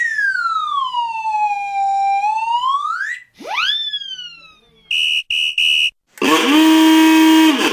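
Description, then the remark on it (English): A string of loud novelty whistles: a long swooping slide whistle, a quick falling whistle, three short piercing toots, then a blaring car horn to finish. No talking. “We got all kinds of whistles. Here, take a listen.”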